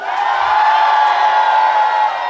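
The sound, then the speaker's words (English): A live audience erupts in loud, sustained cheering and whooping, a dense wall of many voices holding steady for about two seconds before easing slightly at the end. “Hey, yo, I just want everybody to know y'all just cheered for domestic violence.”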